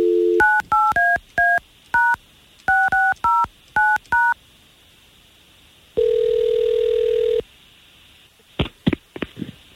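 A phone number is punched in on a keypad, about eleven quick beeping tones in an uneven rhythm, followed by a steady tone lasting over a second and then a few sharp clicks, as hosts of K92.3 country radio station call a listener. No one speaks.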